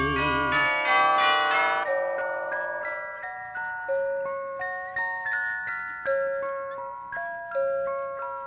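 Bright bells ring out a steady, tinkling melody, each note struck clearly and left to ring briefly before the next, close and fairly loud with no voices.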